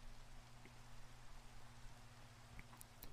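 Steady, soft rain hisses evenly throughout, with a few scattered drips ticking through it and a faint low hum underneath. No voices, just the continuous quiet patter.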